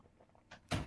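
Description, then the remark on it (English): A door swings shut with a soft initial brush followed by a solid thud, heard alone; the door is shut to keep out the sound of French horn practice. “Let me shut my door real quick so you guys don't hear”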